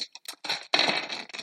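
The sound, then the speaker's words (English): Clattering and rustling as a large number of dice are pulled out and rattled: a few short clicks followed by a denser, continuous jumble of small hard objects knocking together. “Let me pull out my dice.”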